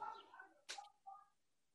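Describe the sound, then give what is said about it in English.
A few short, fake-sounding bird calls chirp and warble, broken by a brief hissy burst midway, then one last call; nobody speaks. “But I love, dude, people are gonna love the sound of the fake birds”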